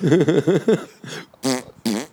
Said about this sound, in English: And that fart, as an 11-year-old boy, that farting scene around the campfire with the beans. Comedy magic, right?